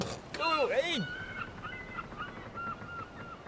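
Gulls cry out in a loud, harsh burst of sweeping calls, followed by fainter, shorter cries repeating in the background over a steady outdoor hiss.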